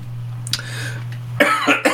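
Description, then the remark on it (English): A female dog sniffs right up against the microphone: one sharp snort, then a loud cluster of quick, breathy sniffs over a steady low electrical hum. “Good sniff, Nova. Good girl.”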